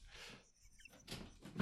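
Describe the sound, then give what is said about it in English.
Soft rustling and shuffling build to a single solid thud at the very end as a door without a knob on one side is pushed shut. No one speaks. “You closed the door. We are stuck in here now.”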